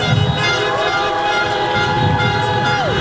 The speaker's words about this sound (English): Honk your horn if you want to have civility again.